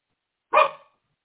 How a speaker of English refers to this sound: I tried to mute so that my dog would not bark you out.